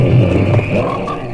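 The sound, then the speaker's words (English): A loud, dense chorus of frogs croaking together in the trailer for the American International Pictures film Frogs, many overlapping calls forming a continuous, throbbing wall of sound, with no voices. “Frogs, today the pond, tomorrow the world.”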